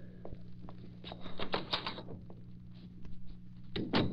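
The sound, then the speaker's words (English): The door into the living room is pushed shut and locked, with several wooden clunks and metallic clicks of the latch over a steady low hum, ending in a final sharp knock. “I suppose Cato locked that door into the living room in case Axford should come in and get curious as to where we were.”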